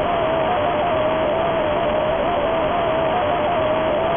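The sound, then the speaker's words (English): The Five Nights at Freddy's 4 nightmare jump scare blares as a loud, harsh wall of static-like noise with a thin, wavering whine running through it, sustained without letup for about four seconds, with no voices. “Yeah, Five Nights at Freddy's 4 nightmare jump scare sound.”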